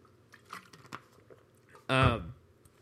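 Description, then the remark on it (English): Someone takes a few quiet sips of water, with soft wet clicks and gulps, then lets out a short, loud voiced breath right after swallowing. “I have to take a drink of water because my throat hurts so bad.”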